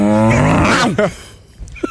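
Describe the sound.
A person loudly imitates a dog, letting out one drawn-out, growly bark that lasts about a second before trailing off into near quiet, with a faint brief noise near the end.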